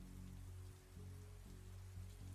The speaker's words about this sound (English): You hear the rain pouring against the window, with every drop sounding like hooves pounding on a battlefield onward to war.